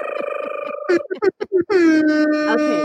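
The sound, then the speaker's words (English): A voice imitates hip hop air horns: a long buzzing blast, a quick run of short stuttered honks, then another sustained blast that sags in pitch at the end. Loud. “I like to do a little hip hop air horns just because it's my favorite part of the story.”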